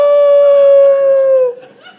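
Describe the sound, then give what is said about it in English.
A voice imitates an ambulance siren with one long, loud, steady wail on a single high pitch, dipping slightly before breaking off into faint murmuring. “I've told you many times, my auntie was the ambulance.”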